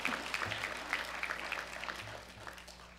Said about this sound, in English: You both get a flower. Let's give them a nice big round of applause. Look at those beautiful babies.